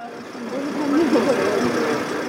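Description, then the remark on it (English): A bus engine idles in Kyiv, Ukraine, with a steady, low rumble throughout as a group of around 25 mothers boards the bus, while indistinct voices murmur over the continuous hum. “The group of around 25 mothers boards a bus in Kyiv, the start of a days-long journey through several countries to reach Russia.”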